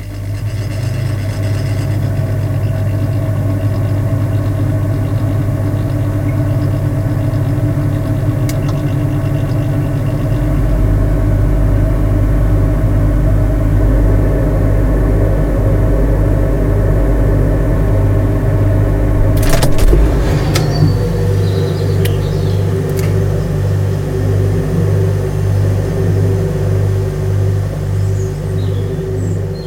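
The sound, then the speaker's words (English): A refrigerator's steady, low motor hum with layered droning tones, recorded from inside the fridge. The drone deepens and swells partway through, then a brief clattering click breaks in before the hum carries on. No voices. “And so what you hear are edited highlights of the fridge.”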